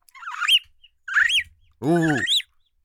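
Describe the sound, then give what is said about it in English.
A person mimics a bird call: three loud, warbling whistled phrases with brief silent gaps between them, the last one fuller and more throaty. “I can do bird noises for some reason.”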